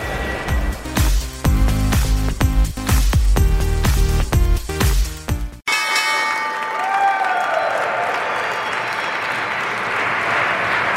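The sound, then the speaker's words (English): The New York Stock Exchange opening bell clangs loudly in a rapid, ringing rattle for several seconds, then stops abruptly, leaving a crowd applauding and cheering steadily. “was the opening bell. You just got the tail end of it.”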